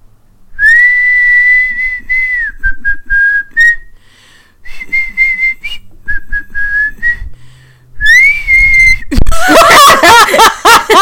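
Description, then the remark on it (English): A person whistles an upbeat pop melody in clear, sustained phrases with a few short breaks, then dissolves into loud laughter near the end. “So I think I would really train and have whistling be my talent for this competition. Like, give me a song and see if I can whistle it.”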